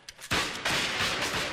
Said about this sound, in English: There's a lot of smoke in a battle. Our cannon, their cannon. Our shot, their shell. Our volleys, their volleys.